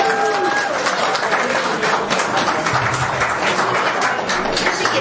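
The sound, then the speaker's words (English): An audience claps for a boy who has just recited a Bible verse, a dense, steady wash of applause that stays loud for about five seconds, with faint crowd voices blended underneath. “Can you give me a clap?”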